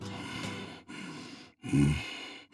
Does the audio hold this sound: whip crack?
no